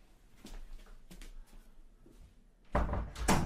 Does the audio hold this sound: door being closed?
yes